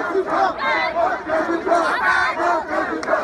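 A large crowd yells and chants together in loud, rhythmic bursts, many voices overlapping in a continuous roar that swells and dips every half second or so.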